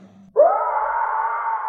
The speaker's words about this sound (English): So that as he dissipates and back to death, you hear a roar in the distance and...